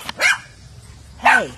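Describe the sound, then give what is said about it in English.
Two sharp, high-pitched yaps from a small female guard dog, loud, separated by about a second of quiet. “Yeah, she's obviously a little guard dog.”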